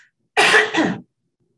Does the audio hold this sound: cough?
yes